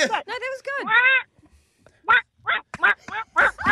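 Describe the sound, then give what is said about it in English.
A person imitates a duck with a run of loud, nasal quacks, first a quick cluster of three or four, then several more spaced out after a short pause, clear with no other talk. “we'd love to hear your duck.”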